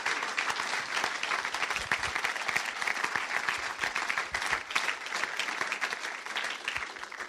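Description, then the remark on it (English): A crowd applauds steadily, dense overlapping claps forming a bright, sustained patter that holds at an even loudness for several seconds with no voices breaking through, given as a round of applause for a girl as she takes her seat. “So I wonder if we'd give her a round of applause as she takes a seat.”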